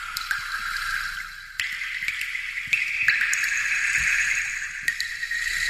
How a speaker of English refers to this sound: The sound of water droplets. People like this for some reason.